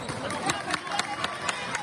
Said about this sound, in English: With the crowd, indoors at the Downey High Gymnasium.